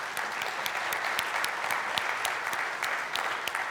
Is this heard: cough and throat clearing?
no